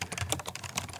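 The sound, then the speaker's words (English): Quick, irregular keystrokes clatter on a computer keyboard, fairly loud, with a faint low hum underneath and no voices. “You know I will, that new typewriter computer you bought.”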